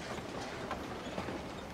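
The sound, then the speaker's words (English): A steady, low rumbling clatter of a passenger train rolling along the tracks in the opening scene of the 1995 film Dead Man, with faint rhythmic clicks and mechanical rattling throughout, moderately quiet and continuous with no voices. “He's sitting uncomfortably on a passenger train, wearing a plaid suit, clutching a huge suitcase.”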